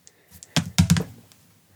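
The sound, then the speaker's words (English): Two small four-sided dice clatter onto a tabletop, a quick burst of hard knocks and taps that settles within about a second, landing on a 3 and a 3. No voices. “I'm going to use both d4s. Four-sided dice.”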